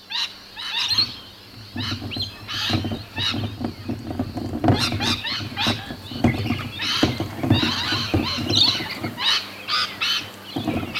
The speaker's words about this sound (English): Oh, that's another noisy bird. Rainbow lorikeets. They're a really bright type of parrot. They're covered in green and yellow, red, orange and blue feathers. Often, there's a whole flock together and they make a big racket when they're waking up